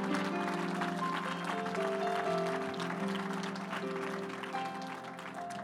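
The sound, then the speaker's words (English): A church audience claps their hands to give God praise in a dense, sustained burst of applause, with steady held musical tones underneath; the clapping stays loud throughout and eases off slightly at the end. “Now, one more time, would you clap your hands and give God praise?”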